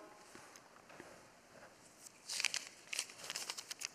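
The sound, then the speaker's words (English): Crisp crinkling of a green and white U.S. paper banknote, starting with faint scattered rustles and building to a run of sharper, louder crackles in the second half, with no voices. “Green and white paper for us in the U.S., right?”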